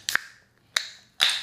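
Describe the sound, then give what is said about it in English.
A drink can being cracked open one-handed: two sharp metallic clicks of the tab, then a louder pop followed by a short hiss of escaping fizz, with no voices. “I was trying to open it one-handed without spilling it.”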